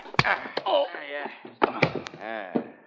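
A scuffle of sharp, heavy thwacks as men use a blackjack to knock a man unconscious, a blow landing several times in quick succession, while men grunt and strain between the hits.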